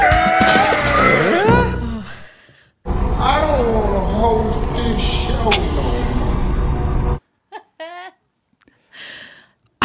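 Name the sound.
glass shattering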